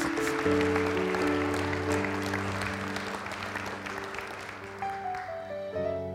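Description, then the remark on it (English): A church audience gives a hand clap of praise to God, a dense, steady wash of applause, while sustained organ or keyboard chords hold underneath and shift pitch near the end. “Come on and give him a hand clap of praise in this house today.”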